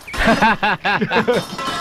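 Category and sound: sound effect, glass breaking sound effect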